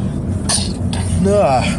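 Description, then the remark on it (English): A sneeze: a sharp, breathy hiss of air bursts out, then a short voiced, wavering cry trails off at the end, all fairly loud and over a steady low background hum. “I gotta sneeze.”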